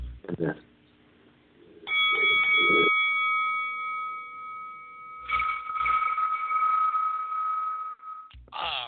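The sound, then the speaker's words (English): A bell sound effect on a show strikes once and its bright, steady tone rings on for about six seconds before cutting off, with people talking briefly before it and again over its fading ring. “I like how the bell rings after what I say,”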